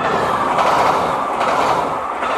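The first direct winter train from St Pancras to Moûtiers and Bourg-Saint-Maurice, carrying skiers and snowboarders, rolls along the rails, a steady, loud rumbling roar with a faint rhythmic clatter of wheels running underneath. No voices are heard.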